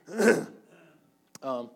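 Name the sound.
coughing and throat clearing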